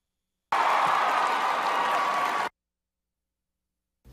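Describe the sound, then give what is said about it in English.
A standing ovation: a burst of crowd applause and cheering, loud and dense, lasting about two seconds before cutting off abruptly into silence. “A standing ovation for bleep Trump.”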